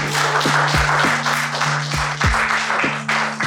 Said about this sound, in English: How about a nice round of applause for the dumpies?